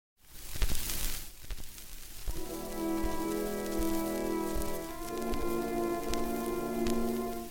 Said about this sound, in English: You hear that crackle? This recording is from 1917, one of the earliest recordings of the Philharmonic.